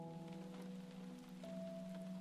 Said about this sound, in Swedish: Regnet smattrar på och här ligger jag.